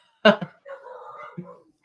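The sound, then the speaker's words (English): A voice imitates how three dogs in an apartment react to anyone walking by: a sharp bark-like yelp, then a drawn-out whiny howl and another short yip, fairly loud, with no other sounds around it. “And just anyone that walks by, for my audience that's listening, anyone that walks by, my dogs just do this.”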